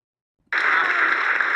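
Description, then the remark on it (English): Applause from an audience breaks out suddenly after silence as a singer finishes singing, a dense, steady wash of many hands clapping at full volume with no voices on top. “Then the audience applauds after she sings, and then we get a new clip.”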